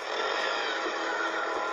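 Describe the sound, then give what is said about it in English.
A gas-powered auger with a 3-foot-long bit drills into dirt to break it up for digging, running with a steady, loud, buzzing engine drone and a gritty churning edge, holding constant for the whole moment with no voices. “This gas-powered auger with a 3-foot-long bit helps break up the dirt.”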